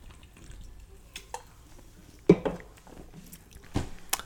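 Someone sips a Diet Coke, with a few soft clicks and a couple of short, wet slurping bursts spaced over several quiet seconds, no talking.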